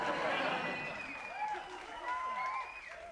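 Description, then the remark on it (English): An audience at the Dog Snout County 4th of July Festival cheers and applauds at night, a dense wash of clapping with whoops and shouted voices rising over it, loud throughout and swelling again near the end. “Y'all don't stop cheering, and I'll have to sew your mouth shut like I do to my interns.”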